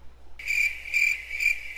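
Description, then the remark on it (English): Crickets chirp in a steady high trill that swells and fades three times, with nothing else audible and no voices. “And silence fell upon the earth. All crickets.”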